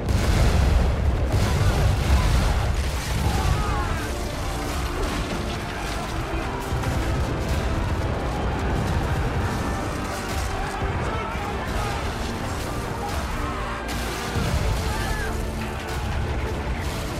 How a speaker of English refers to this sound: And then Kilnaeus gives a hearty laugh, gives an order, and then the cannons go blazing and the sloop gets ripped to pieces.